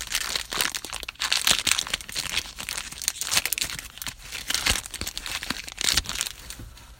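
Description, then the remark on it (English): A Kaladesh card booster pack being torn open: crinkly, crackling foil rips and rustles in irregular bursts, loud and bright with sharp snaps, and no voices over it. “Yeah, last pack. Kaladesh. Here we freaking go.”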